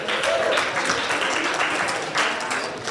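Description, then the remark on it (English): An audience applauds at mention of the American Printing House for the Blind, a dense, steady wash of many hands clapping at once that holds strong for the full three seconds, fading only slightly toward the end. “Listen, lots of great stuff happening at the American Printing House for the Blind with applause or some other way of signifying.”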